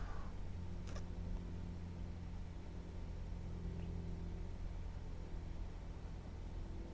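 A bus engine drones steadily with a deep, constant rumble and road noise as the bus speeds along, a few faint clicks and rattles near the start, no voices.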